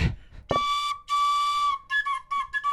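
A recorder, played in the biscuit bunker, plays a few breathy, reedy notes: one long sustained tone, then a quick run of short notes at shifting pitches, loud and unaccompanied after a brief rustle.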